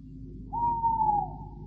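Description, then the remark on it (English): A single long owl hoot in a graveyard at midnight, a steady mid-pitched tone that sags slightly at the end, rises over a low, rumbling background and fades out after about a second. No voices. “Has it ever occurred to you, Canon, that an owl chooses the oddest place in which to conduct his romantic exploits?”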